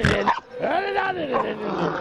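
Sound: puppy growling and barking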